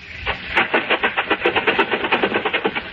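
An old car engine chugs into life after the choke is pulled out and the gas pedal is pressed, a rapid, steady run of loud putt-putting beats over a hissing, rattling rumble, with no voices.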